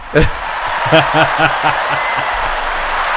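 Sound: stadium crowd applause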